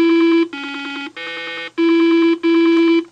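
Tones from Simon, Milton Bradley's late-1970s four-tone electronic memory game toy: five buzzy, steady beeps, each roughly half a second, stepping between a few different pitches with brief gaps between them. No voices.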